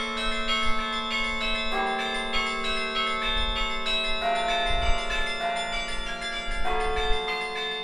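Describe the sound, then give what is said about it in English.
The Knicker Carillon bells ring out from the UT Tower on campus, their rich, overlapping tones hanging in the air as fresh strikes arrive every couple of seconds, steady and resonant over a faint low rumble. “The bells of the UT Towers' Knicker Carillon make some of campus's most recognizable sounds.”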